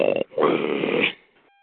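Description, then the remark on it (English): A person snoring heard through a tinny phone line: a short rasping snort, a brief pause, then a longer, loud, gravelly snore that fades out. No talking. “Somebody fell asleep on the conversation.”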